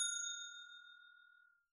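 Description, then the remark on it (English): A single bright bell ding with a sharp strike and a clear ringing tone that slowly fades out over about a second and a half, heard alone; the bell is hit to mark the start of a discussion of the Birds of Prey movie. “I'm going to hit the bell because we are going to talk about the Birds of Prey, Fantabulous Emancipation of Harley Quinn movie, and we're going to spoil it.”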